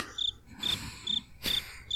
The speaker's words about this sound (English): Like I left that one for the cricket sound effect.